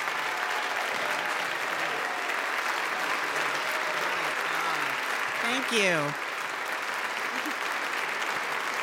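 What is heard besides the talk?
audience applause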